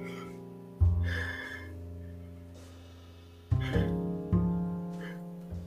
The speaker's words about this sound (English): Yawn number two. Yawning can be annoying, especially because it, like, as soon as I start doing the show, I start to yawn, and I'm like, I'm not even tired. I don't know why I'm yawning.